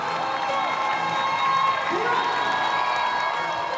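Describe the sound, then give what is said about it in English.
A crowd, including Brazilian expat fans, cheers steadily for Marta at an Orlando Pride home soccer game, a dense wash of many voices with scattered whoops and shouts rising over the continuous roar, holding loud throughout. “Yeah, they cheered.”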